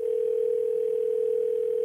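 A steady telephone dial tone as a call is placed, a single unwavering mid-pitched note holding at an even, moderate level with no voices over it.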